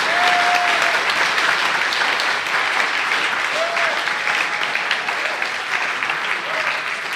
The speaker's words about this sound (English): Let's give the children another round of applause.